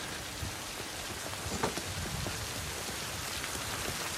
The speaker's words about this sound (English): Just your regular New England rainy kind of shitty day.